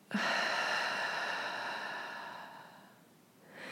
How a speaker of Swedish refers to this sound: Så andas in genom näsan, fyller upp magen med massa luft. Och släpper långsamt ut genom munnen.